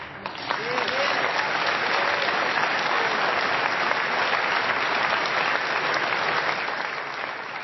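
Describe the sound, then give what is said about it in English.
An audience claps steadily and loudly for several seconds, a dense, sustained wash of applause with faint murmured voices beneath it, after a woman says she is ready, as Prime Minister, to press the nuclear button. “She said she's willing to push the button for nuclear annihilation of the world, and the people clapped.”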